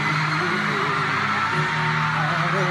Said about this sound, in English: Good luck trying to listen to this, because it's nothing but screaming.